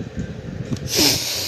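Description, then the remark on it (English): Nasal sniffing from a person with allergies: a couple of brief, soft sniffs followed by a longer, loud, hissy sniff drawn in through the nose, heard alone. “My God, it's like I'm sniffing my nose so much.”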